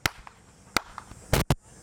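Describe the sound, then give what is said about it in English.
Four sharp hand claps land at uneven intervals, fairly loud, with a couple of fainter claps between them and no voices, as a person claps while walking around a yard to get a dog used to bangs before gunfire. “I walk around the yard and I clap and I play little songs with my daughter.”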